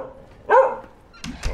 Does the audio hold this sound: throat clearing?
no